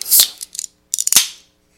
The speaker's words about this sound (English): But let's crack this bad boy open and give it a shot and see how it is.